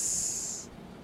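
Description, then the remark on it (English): A voice makes a single sustained, sharp hissing sound like a snake, voicing the title of a 1970s horror movie written as seven S's, lasting just over half a second before cutting off into quiet background. “It's like a snake hiss.”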